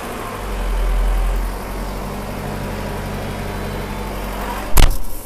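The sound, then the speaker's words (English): A tractor engine runs steadily with a deep, continuous low rumble, fairly loud, briefly swelling early on, then a single sharp clunk near the end. No one speaks. “In fact, I don't want to sound controversial, but if you're going to drop any voice, perhaps drop your voice and just have the tractor.”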